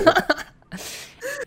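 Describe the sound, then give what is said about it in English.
A sneeze: a few sharp, choppy breaths, then a loud burst of hissing noise, followed by a brief strained vocal sound at the end. No one speaks. “Bless you. Jeez.”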